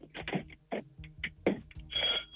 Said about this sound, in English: Oh, excellent. Love that doorbell.